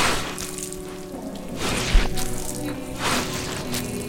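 Wet, sloppy scraping and splattering sounds of wet sewage sludge being shoveled, with a sharp thud near the middle as a heavy load lands, followed by more slushy shoveling of thick sludge.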